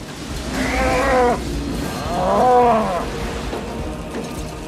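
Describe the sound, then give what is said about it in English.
Two drawn-out cow bellows, each lasting about a second, ring out over a constant roar of strong tornado wind under a storm's flanking line. The animal sounds loud, and no one speaks. “We got cows.”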